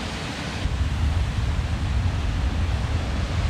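Ocean waves wash against the shore in a steady, rushing roar with a heavy low rumble, growing slightly louder after the first half second and continuing unbroken, with no voices.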